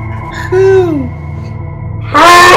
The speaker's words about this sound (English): That's how owls sound.